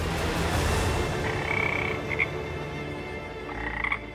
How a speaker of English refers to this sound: The Pharaoh raised an eyebrow. A frog! You've summoned a frog.